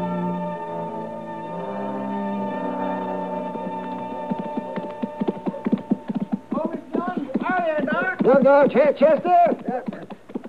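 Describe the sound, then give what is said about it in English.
A held musical chord fades out as the hooves of the horse Chester is riding clip-clop in, a steady rhythm of hard hoof strikes that grows louder and busier toward the end. “It's a good-looking horse Chester's riding, Matt.”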